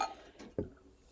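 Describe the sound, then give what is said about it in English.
Soda is poured into a glass, a brief pour with a sharp plop and a faint fizzy hiss trailing after it. No one speaks. “But see how just literally all of it just, even from pouring it into a glass.”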